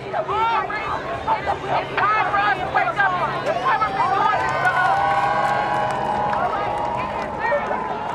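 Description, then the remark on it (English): A large crowd of protest marchers on Interstate 94 at about 10:30 p.m., shutting down the highway and blocking traffic in both directions, fills the air with overlapping shouts and raised voices, a dense, continuous outdoor hubbub with no single speaker standing out. “At about 10:30 p.m., the marchers got on the highway.”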